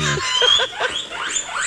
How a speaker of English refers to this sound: Guinea pig. It was a guinea pig that you're I You're hunting guinea pig?